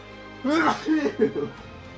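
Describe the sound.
A single loud, explosive sneeze: a sharp, breathy burst that tails off into a few short voiced gasps and sputters, with nothing else around it.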